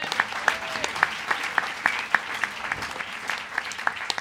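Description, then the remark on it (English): Steady audience applause welcoming comedian Rich Hall, a dense patter of many hands clapping at a moderate level, with sharp individual claps popping out above the wash of sound. “So please welcome, with a huge round of festi applause, Rich Hall.”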